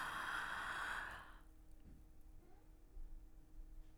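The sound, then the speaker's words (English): A long, airy breath drawn in for over a second during a breathing exercise, fading out into near silence with no talking. “So you're breathing in Yah, but you're saying it in your mind.”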